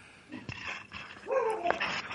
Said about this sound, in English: I'm sorry, your dog is going nuts there. Yeah. She heard another dog outside.